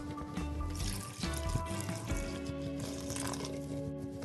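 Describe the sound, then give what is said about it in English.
Water pours steadily into a mixing bowl of durum and white flour and salt for bread dough, a continuous splashing trickle for a few seconds with a faint background hum and no talking. “Okay, now also add the water.”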